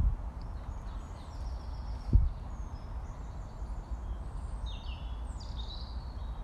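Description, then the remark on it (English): Faint birdsong with scattered chirps and whistled calls over a low outdoor rumble, broken once by a soft thump. No one speaks. “It's good to hear the bird song.”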